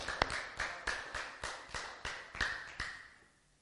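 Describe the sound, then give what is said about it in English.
An audience claps together in praise of God in a steady, brisk rhythm, about ten sharp claps in a row with a ringing tail behind each one and no talking. “Give him another hand clap of praise tonight.”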